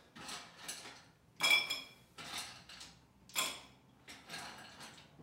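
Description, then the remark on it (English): Ice cubes drop and clink into a rocks glass, a piece from Ben Schott, as it is filled with ice, in a series of bright, clattering bursts, a few sharp ringing clinks standing out among rattles, with short pauses between scoops and no talking. “So then we've got our nice rocks glass. This one is a nice little piece from Ben Schott. Boom. Fill glass with ice.”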